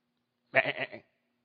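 A single sheep bleats once, a wavering, pulsing baa lasting about half a second, clear against an otherwise quiet background.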